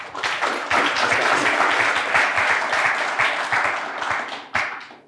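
crowd, audience round of applause

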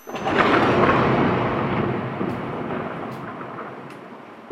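sound effect, thunder sound effect

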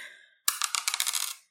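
household object, dice being rolled

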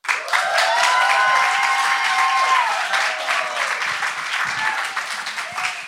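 crowd, audience applause and cheering

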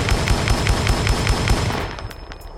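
sound effect, gunshot sound effect

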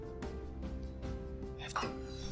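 human body sound, sneeze

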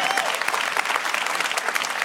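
crowd, audience clapping

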